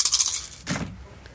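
A rapid, bright clatter of damage dice tumbling across a hard tabletop during a tabletop game, then a second brief rattle and a faint final click as they settle. No one speaks.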